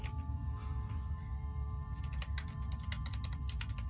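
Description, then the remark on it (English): Quick, irregular clicking of computer keyboard keys tapped in rapid bursts, over a steady low hum with no one speaking. “Madly typing.”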